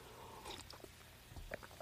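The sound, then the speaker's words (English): A quiet sip from a drink, with soft slurping and mouth sounds and a faint swallow, no talking. “Let me take a sip real quick.”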